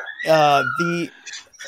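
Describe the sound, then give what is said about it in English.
Dogs barking, not the speaker's own: two strong, tonal barks in quick succession, the first longer, followed by fainter yelping, with a thin steady whine running underneath. “The dogs are barking, as you can tell.”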